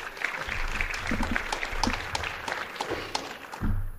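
An audience applauds steadily for several seconds, a dense wash of many hands clapping in a large room, with a low thump near the end as it winds down.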